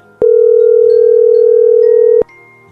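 A phone call placed by Ryan Seacrest on Kiss FM to a listener's son rings out: one loud, steady ringback tone holds for about two seconds, starting and ending with sharp clicks, with no voices.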